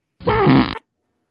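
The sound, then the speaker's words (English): A single drawn-out raspberry made with the mouth, a loud buzzing fart imitation lasting about half a second, isolated with silence on either side. “I feel like a fart noise.”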